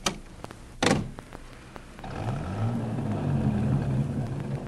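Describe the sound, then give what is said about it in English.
A few sharp thumps and a heavy clunk, then the engine of a T-bird car rumbles in, its low drone rising and settling as the vehicle rolls up and idles. “Careful with the T-bird. The brakes need adjusting.”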